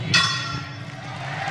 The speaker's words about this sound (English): Why didn't I hear the bell ring? What the hell just happened? Ding.